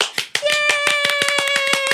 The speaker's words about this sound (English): Yay! I definitely started that clap for myself. Sis, you gotta celebrate yourself first.